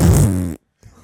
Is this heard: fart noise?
yes